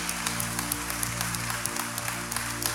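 Steady audience applause after a morning prayer, a hand clap of praise to God: many hands clapping together in a dense, continuous patter over a low droning hum, holding at an even loudness throughout.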